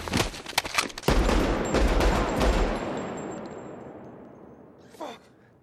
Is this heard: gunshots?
yes